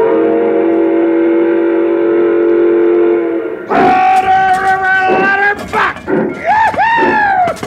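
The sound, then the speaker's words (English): A steam locomotive whistle sounds one long, steady blast, then breaks into several louder, wavering toots that bend and slide in pitch, filling the whole clip. “you want to blow the whistle?”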